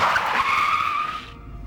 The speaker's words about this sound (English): I slammed on the brakes and pulled over on the side of the road.